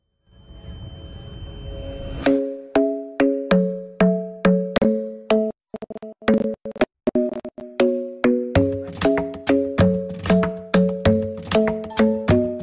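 A pop song intro starts after a brief low rumble: a bright, plucky marimba-like riff repeats in a steady rhythm, loud, with a deeper bass line joining midway.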